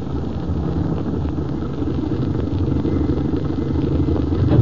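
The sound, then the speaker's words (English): A car engine rumbles low and steady, the motor running continuously before slowing and settling down as the car stops, with no voices heard. “Go a little more, then stop. We'll walk the rest of the way.”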